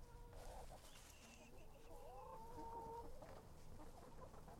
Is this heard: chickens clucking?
yes